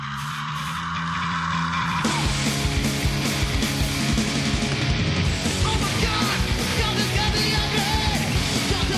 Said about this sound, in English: Didn't care for the scream in the beginning.